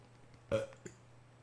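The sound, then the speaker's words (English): A single short, fairly loud burp, followed by a faint second release a moment later, over a quiet background hum with no talking. “Hold on, I got a burp.”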